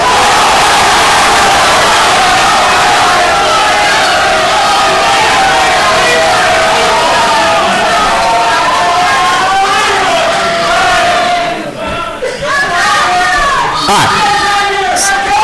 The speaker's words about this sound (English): On the count of three, I want your school cheer all at once. Whether it's Roll Tide, Go Vols, Fight On, Hook 'em, whatever it is, all at once, all right?